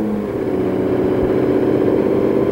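A loud Porsche 917 race car engine drones with a steady, throaty rumble that rises slightly as the car pulls out of pit road, continuous throughout with no voices.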